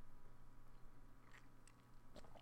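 A few quiet sips from a drink, spaced irregularly over a low steady hum, with soft wet mouth sounds and no talking.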